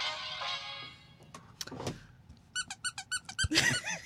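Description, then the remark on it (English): A squeaky dog toy squeaks in a quick series of about seven short, rhythmic, loud bursts, after some rustling and handling noise; no one speaks. “The dog toy.”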